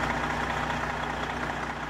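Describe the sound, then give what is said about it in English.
Steady, continuous rumble of buses idling during a climate change rally, a low droning hum with a constant mechanical texture and no speech, holding at an even level throughout. “Idling buses.”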